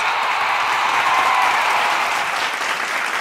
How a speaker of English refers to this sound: They do. They do. That round of applause. Wow, it spoke to me.